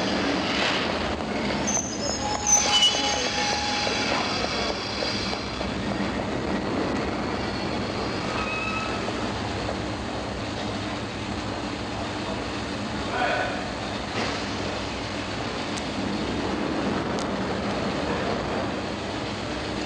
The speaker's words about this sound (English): While beneath the city, an underground train stops at Waterloo Station, not Charing Cross.